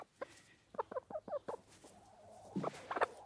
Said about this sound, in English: I'm basically bathing a chicken. I'm showering a chicken. You're quite waterproof.